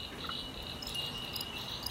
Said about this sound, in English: So these are lovely sounding birds, but they're a little bit greedy and they can change the whole forest. You can hear bellbirds in the mountain and coastal areas of Queensland, New South Wales and Victoria.